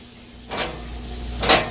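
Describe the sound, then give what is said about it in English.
Two short bright clatters about a second apart as two pieces of bread are put into a toaster oven and the door closes, over a low steady hum with no talking. “I'm gonna pop these two pieces of bread in my toaster oven.”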